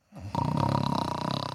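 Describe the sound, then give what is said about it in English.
A voice imitates the loud, rattling snore of a sleeping king: one long, gravelly drawn-out snort with a rapid fluttering buzz, forceful, with no speech around it. “Later that night, the king was fast asleep and snoring like a cow.”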